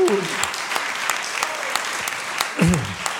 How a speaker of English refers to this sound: Now give them a praise and give them a clap offering. Hallelujah. Woo.